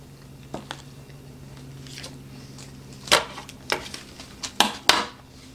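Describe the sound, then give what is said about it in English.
A bite into a baked dish topped with breadcrumbs and cheese sauce, with a few sharp crunches and soft clicks clustered near the end over a low steady hum, and no talking. “How does it taste? Get some of those breadcrumbs. Get some of that cheese sauce.”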